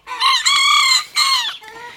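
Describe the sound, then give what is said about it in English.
Miniature roosters crow in close succession, thin, high-pitched and strained, like rusty wind-up toys, each call rising then trailing off, with a fainter crow answering at the end. “But that just cues the weird mini roosters, crowing away like rusty wind-up toys.”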